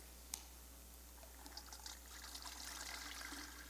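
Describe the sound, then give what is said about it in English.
After a brief click, liquid is poured from open containers, a soft splashing trickle that builds and thickens into a steady, fairly quiet stream with no voices. “But now we'll take the tops off. All right, and let's not make a mess, okay? So start pouring those in.”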